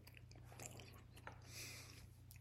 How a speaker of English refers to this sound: So, I'm just munching on a banana to keep my energy up.